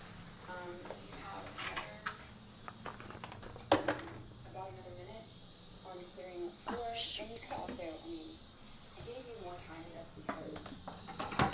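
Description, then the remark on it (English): A long toilet flush, a steady hissing rush of running water that continues unbroken through the whole stretch while voices talk over it. “I have the longest flushing toilet ever created.”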